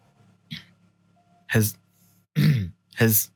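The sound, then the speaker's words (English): Someone imitates snoring with their voice: a short faint snort, a pause, then three loud rasping snorts with uneven gaps between them, like breathing stopping and restarting, over a low steady hum. “You kind of hear him like almost like stop breathing. You should probably get him checked for sleep apnea at some point.”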